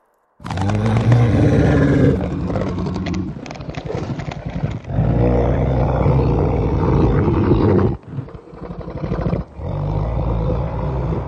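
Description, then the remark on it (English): A deep, rumbling dinosaur growl roars loudly and almost continuously, rising into several long, snarling bursts with brief dips between them, with no voices present. “A shadowed shuffling as something clicked, popped, then a dinosaur growl.”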